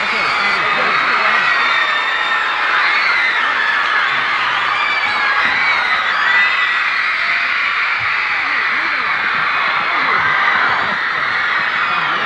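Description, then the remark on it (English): A huge crowd screams nonstop at a concert after the performers have finished, a dense, high-pitched roar of voices that stays loud and unbroken throughout, with no distinct words or music rising above it. “Now, when they're finished, the screams keep going on.”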